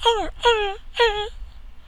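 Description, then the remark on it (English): A small dog whimpers three times in quick, evenly spaced bursts, each a strained, high-pitched whine that bends downward at the end like a stifled bark, with no talking around it. “It's crying for help, the dog, but like it doesn't want to bark.”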